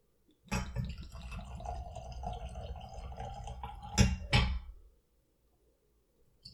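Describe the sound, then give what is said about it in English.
Whiskey glugs and splashes steadily into a glass from a freshly opened bottle for about three seconds, ending with two sharp knocks of glass, then silence. The pour is fairly loud, with no talking. “We'll see if I think that after I pour.”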